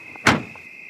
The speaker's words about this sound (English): Clearly driving on some sort of gravel, maybe some mud. Outside. Opens the car door. Listen to the footsteps.